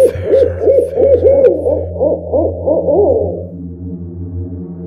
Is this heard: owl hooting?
yes